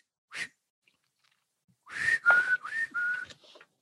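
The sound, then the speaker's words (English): A person whistles a short tune on the deck of a boat at sea: one brief opening note, a pause, then a quick run of several bright, clear notes, with no talking. “Hey, it's bad luck to whistle on deck.”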